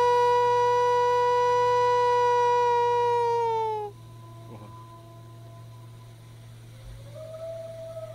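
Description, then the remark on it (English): A wolf starts the pack's howl in one long, steady, slightly falling note for about four seconds. Fainter howls from the pack follow, with one rising cry near the end. “He started the howl. You can hear it here.”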